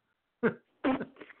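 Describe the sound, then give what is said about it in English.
Two sharp coughs burst out a moment apart, the second trailing into rough, throaty breathing and sputtering sounds. “That was, oh, God, I'm glad I'm done coughing because that would have added to it.”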